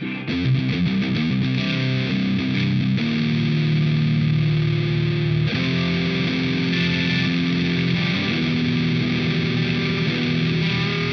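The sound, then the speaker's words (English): Heavy distorted electric guitar played through a Friedman BE100 amp chugs through thick, sustained chords with a dense, saturated amp tone, playing loud and steady for the whole stretch with no voices. “Friedman BE100 with ….”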